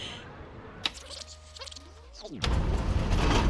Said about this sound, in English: Ooh. Sorry. My car is ancient and the roads on this side of town are, like, barely paved.